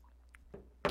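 sipping coffee

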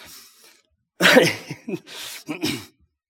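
coughing

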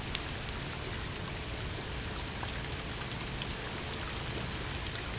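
rain falling

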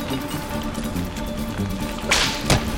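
whip cracking

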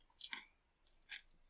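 dice being rolled

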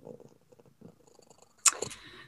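cat purring

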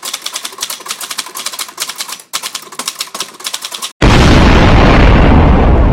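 typing on a typewriter

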